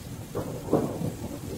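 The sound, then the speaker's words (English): A deep rumble of thunder rolls through steady rain during a massive storm, with wind in a forest behind a home, swelling to a peak midway before easing back into the continuous hiss of a downpour. “I awake to thunder and lightning and wind howling through the forest behind my home.”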